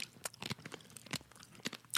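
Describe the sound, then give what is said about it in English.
Dry crunching as a light-roasted coffee bean is bitten and chewed, a rapid series of sharp cracks and brittle snaps over about two seconds, with no talking. “I don't want to tank their score because of the crunch, but...”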